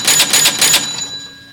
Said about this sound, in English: All right. Well, now it's time to move on to the food fight cage match. Let's hear that bell.